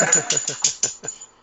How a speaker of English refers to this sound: The hell was that, a dog? Yes. Jesus Christ. The dog woke up.